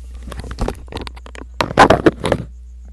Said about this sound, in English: Ooh, sorry about that. Dealing with the storm. And yeah, it's crazy out here. Arizona, monsoon season. So the wind, you know, it's coming. The rain is howling. And then my windows decided to give, and I had to kind of deal with that real quick.